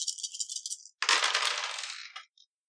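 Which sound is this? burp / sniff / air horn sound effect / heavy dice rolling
heavy dice rolling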